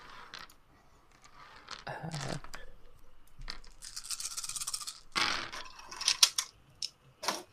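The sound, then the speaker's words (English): Several dice are shaken in a rattling, scratchy burst that builds over a few seconds, then clatter out in a quick spill of sharp clicks before settling, rolled for a charisma stealth check in a game. “Roll me a charisma stealth.”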